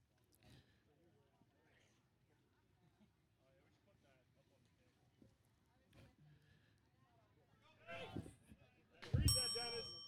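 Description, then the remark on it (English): A single bright bell, rung to mark a pitch at a baseball game, rings out loudly near the end, its clear tone lingering after a soft background of murmuring voices and low crowd noise. “I haven't necessarily been following this bell on the pitch thing, but when I remember, there's a pounder into the ground.”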